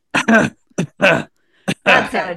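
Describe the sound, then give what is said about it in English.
Three fairly loud bouts of coughing and throat clearing, each a short catch followed by a longer rasping clear, evenly spaced with brief silences between and no talking. “Oh, no, now you've got the cough.”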